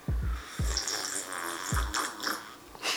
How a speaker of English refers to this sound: Wow, I need to take a sip of tea. Okay.